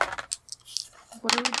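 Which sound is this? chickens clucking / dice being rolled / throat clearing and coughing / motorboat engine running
dice being rolled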